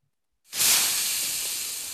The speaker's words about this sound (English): Sizzle. Sizzling on the hand.